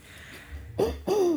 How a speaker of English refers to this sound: Goodness. I really wish that my whatever is making me cough would stop it. It's the worst.